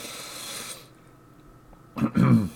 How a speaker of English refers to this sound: I have to keep clearing my throat. I'm terrible at this.